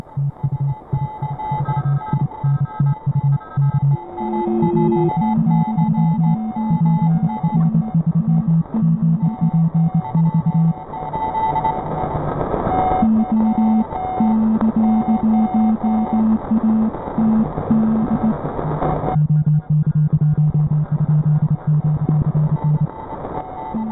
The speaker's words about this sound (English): It's a complex coded system in the Morse code.